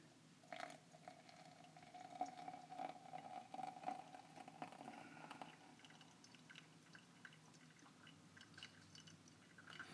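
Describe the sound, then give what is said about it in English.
A little hot water trickles and pours steadily onto coffee grounds in an AeroPress to bloom the coffee, a soft liquid stream with faint drips and gurgles that continues for the whole stretch without any talking. “A little water, a little hot water to get the bloom of the coffee.”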